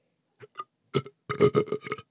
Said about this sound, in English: 3, 2, 1. Burp on command.